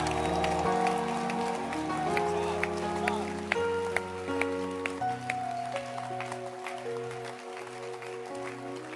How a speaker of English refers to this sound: A new life. Clap your hands.